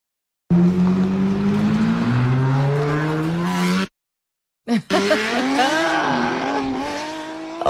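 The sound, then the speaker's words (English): A car engine's exhaust roars loudly, climbing steadily in pitch as it revs, cuts off briefly, then bursts back in with rising and falling revs. “Certain days, that sound out of the exhaust can really grate you.”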